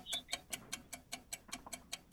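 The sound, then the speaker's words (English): A steady, rapid ticking of a countdown timer for a timed word game, about five crisp ticks per second, clear with no voices, running evenly throughout. “You ready to beat the clock?”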